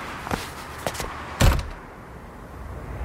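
A few light knocks and shuffles, then a single solid thud as a door shuts behind someone leaving, followed by quiet room tone. Nobody speaks.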